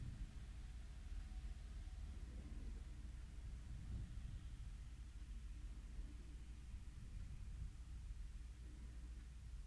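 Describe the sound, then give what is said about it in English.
Light rain falls outdoors as a steady, soft hiss while leaves blow, with a low, continuous rumble beneath it of cars and trucks driving by in the background. No voices are heard. “There's a light rain.”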